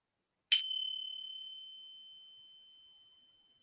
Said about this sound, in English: So you will hear a bell at the beginning of the practice and also at the end. So if you are ready, then please stand up. Take a few breaths before you hear the bell.